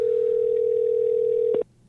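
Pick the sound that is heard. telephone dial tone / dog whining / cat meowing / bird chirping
telephone dial tone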